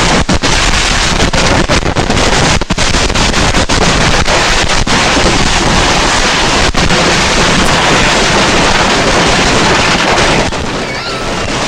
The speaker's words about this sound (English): And it's a big ass explosion, but let's watch because it just keeps exploding. It gets the gift that keeps on giving.